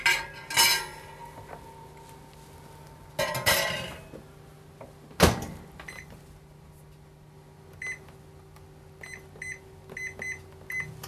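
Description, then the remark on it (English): A baking pan clanks and scrapes onto the low metal rack of a convection microwave oven set to 325 degrees, in a few sharp metallic knocks over a low appliance hum, followed by a run of short electronic beeps. “Go ahead and use the low rack of your oven.”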